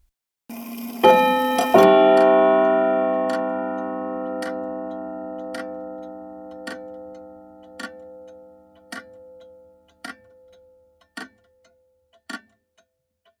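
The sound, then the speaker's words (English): A grandfather clock strikes the hour with a resonant chime that slowly rings out, then a steady, evenly spaced ticking continues alone, clear, about once a second. “her grandfather clock terrifying us on the hour, every hour throughout the night.”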